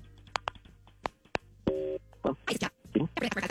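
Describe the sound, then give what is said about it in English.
A quick series of clicks leads into a brief steady dual-tone beep of telephone dialing, followed closely by people talking. “Let's make the phone call on KDWB's War of the Roses.”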